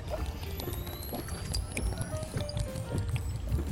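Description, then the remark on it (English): Water pours steadily into a cup as the final step of making coffee from a Cometeer capsule, a continuous splashy trickle with faint ringing tones, lasting a few seconds with no voices. “Now that you've woken back up from your sleep, final step, water.”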